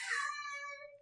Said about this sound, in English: Oh, we have a very noisy cat. I don't know if you guys can hear. That's Bradley. He's a little black cat.